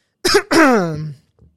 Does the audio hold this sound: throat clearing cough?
yes